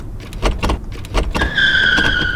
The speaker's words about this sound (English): Lenny turns her badly abused car off the road onto a dirt road.